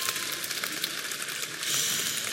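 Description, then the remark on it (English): An audience applauds, a dense, steady patter of many hands clapping at once that swells slightly louder near the end, with no voices heard over it. “Let's give a clap to these guys.”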